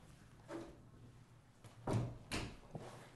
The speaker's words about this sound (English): Sorry, my dog's scratching at the door.